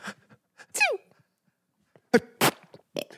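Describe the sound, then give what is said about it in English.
A voice imitates a stifled, held-in sneeze: a squeaky, sliding breath, a pause, then two short, choked bursts, fairly loud, with no talking. “You know what my least favorite sneeze is? People that do this.”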